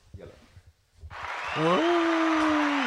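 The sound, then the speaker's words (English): After a second of quiet, a loud, dense burst of applause welcoming a special guest starts and carries on steadily, with a long whooping cheer from one voice riding over the clapping. “A round of applause.”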